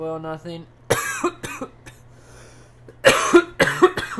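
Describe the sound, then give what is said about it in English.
Several harsh coughs burst out in an irregular cluster, loud and right against the microphone, with brief pauses between them and a low steady hum underneath. “Sorry for coughing into the mic.”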